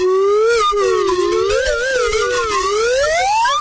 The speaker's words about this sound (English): Would it be possible to get a slide whistle duet for a ringtone?